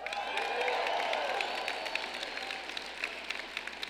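A large audience breaks into sustained applause mixed with cheers and whoops, a dense wash of clapping with scattered sharp claps standing out as it slowly tapers off.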